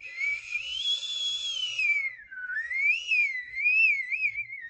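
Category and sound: household object, whistling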